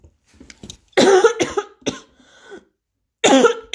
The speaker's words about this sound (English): Sorry, I think I'm just coughing from talking so much.